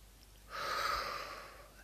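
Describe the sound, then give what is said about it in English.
A single slow, deep breath drawn in through the nose, a soft airy rush that swells and lasts over a second, with no talking around it. “Inhale.”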